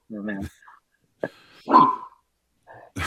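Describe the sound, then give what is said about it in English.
A dog barks in a few short, separated bursts, moderately loud, with brief quiet gaps between the barks. “we're having a barking party and a meowing party here on Native Roots Radio”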